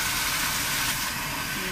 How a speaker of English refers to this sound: Next thing I like to do is turn on the shower because it's very soothing. I love it. It sounds so beautiful.